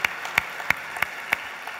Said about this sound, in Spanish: Le quiero dar un aplauso al Señor Jesús. Y ellos están aquí este día, así es. Puedo abusar de ustedes, si pueden levantar su mano para que le aplaudamos al Señor.